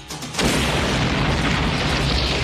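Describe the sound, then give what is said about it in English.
A single loud bomb blast erupts suddenly after a brief quiet moment, then rolls on as a sustained, deep rumbling roar with crackling debris for the remaining two seconds. “That was a bomb? That had a hell of a factory recall.”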